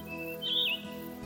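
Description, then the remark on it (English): A single bright bird chirp from birds in the trees of a forest rises and warbles briefly, clear, over a soft steady hum of outdoor ambience with no voices. “You might hear the birds in the trees,”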